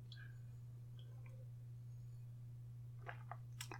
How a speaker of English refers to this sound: I'm going to take a big drink. Here we go. Ready?